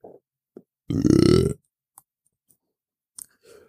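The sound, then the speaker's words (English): A squeaky chair lets out one loud, drawn-out creak lasting about half a second, a low rasping groan that rises slightly in pitch, with a few faint clicks before and after. “This chair really is squeaky, isn't it?”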